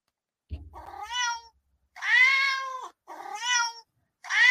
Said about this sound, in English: All right, gotta love that. There's the cats. Okay, yep. Yep, those are the cats. Yep, those are the cats.